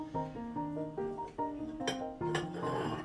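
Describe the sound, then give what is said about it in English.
A glass bowl clinks as it is lifted out, with a couple of sharp, bright knocks over a steady background of ringing, shifting tones. “Okay, here's the bowl. It's a glass bowl.”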